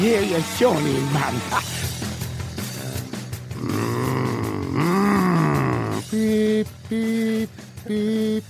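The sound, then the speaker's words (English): A man vocally imitates Andy Townsend's tactics truck from ITV's The Premiership reversing into position: gruff engine rumbles and rising groans, then three evenly spaced 'beep' tones mimicking the truck's reversing alarm, loud. “It's the sound of Andy Townsend's tactics truck reversing into position.”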